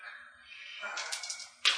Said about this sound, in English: I saw a lot of dice being rolled there. And I see a 97.